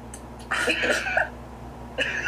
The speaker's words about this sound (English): Did you just cough into your phone?